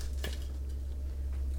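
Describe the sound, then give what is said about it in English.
Garlic sizzling in a pan, a faint, steady hiss over a low hum, broken by a couple of brief, sharper crackles. No one speaks. “You might be able to hear there the garlic just kind of sizzling away.”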